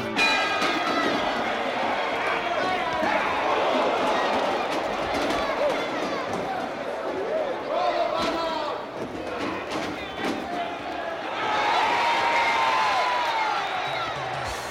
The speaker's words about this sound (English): the section of the song where the music stops, and then you just get the sound of like a crowd cheering or jeering. You kind of hear Throw the Bum Out.